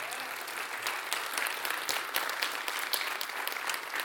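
A crowd at a service claps steadily for about four seconds for the parking team, a dense, even wash of applause with sharp individual claps scattered throughout and no voices rising above it.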